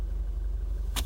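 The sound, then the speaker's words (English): Steady low rumble of a car interior, engine and road noise droning evenly, with two brief sharp clicks or rustles near the end. No one speaks. “I'm not going to keep always recording my car.”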